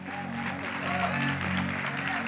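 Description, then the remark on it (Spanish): An audience claps in a steady, dense wash of applause lasting a couple of seconds, with a murmur of voices underneath. “Bueno, no todos aplauden, ¿eh?”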